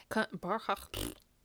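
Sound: burp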